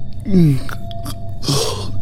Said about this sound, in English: Yawn. Just a bit.